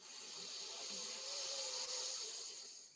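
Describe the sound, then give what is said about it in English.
A long, steady airy hiss of breath drawn in through the left nostril during an alternate-nostril breathing exercise, soft and unbroken for about three seconds, with no talking. “And repeat, breathing in through the left nostril,”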